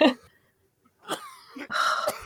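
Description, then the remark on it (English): A coughing fit: a harsh cough, a brief pause, then a cluster of rough, hacking coughs in quick, uneven succession, fairly loud against a quiet background. “I had a coughing fit there.”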